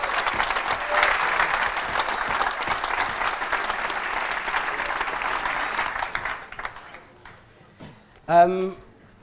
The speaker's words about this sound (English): please, a round of applause for the nicest guy I know, Mr. Gary Vaynerchuk.